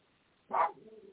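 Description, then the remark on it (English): A dog gives one short, sharp bark, loud against a quiet background, followed by a faint low murmur. “He's barking at nothing.”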